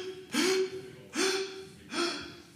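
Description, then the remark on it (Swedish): Three deep, airy breaths in and out, each a short rushing burst about a second apart, with no talking in between. “Andas in. Andas ut.”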